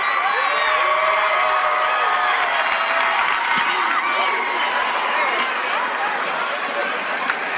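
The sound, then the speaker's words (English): A large college football stadium crowd in Missouri roars and cheers continuously as a female kicker is about to kick the ball, a dense wall of voices at steady high volume with scattered shouts and whoops rising out of it. “You can hear the crowd.”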